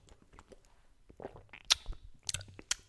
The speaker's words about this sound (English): So cheers to that. Gonna take a sip of my drink.